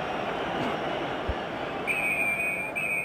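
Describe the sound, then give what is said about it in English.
A referee's whistle for half time cuts through steady crowd noise: a long, shrill blast followed by a second shorter one, high-pitched and piercing above the murmur of the stadium. “Referee blows for half time. The crowd didn't like that.”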